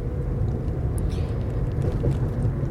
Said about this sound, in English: and I am in my car again.